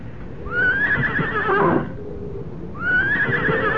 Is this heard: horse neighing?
yes